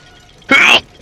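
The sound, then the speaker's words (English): A single sharp sneeze bursts out, loud and brief, with a voiced, slightly rising tone through it before it cuts off into quiet. “Bless you.”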